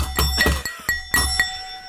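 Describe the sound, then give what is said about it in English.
A drinking glass is struck about six times as a quiz ding, in quick, uneven taps, each dull knock leaving a bright, high ringing tone that lingers and slowly fades. No one speaks. “Glass is still intact. It's not yet broken, but there are still.”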